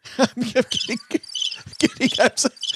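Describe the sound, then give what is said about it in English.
A crickets sound effect: crickets chirp in quick, repeated bursts, a bright, high-pitched trilling that pulses unevenly and sounds fairly loud throughout. “There's real crickets now, thanks to OG.”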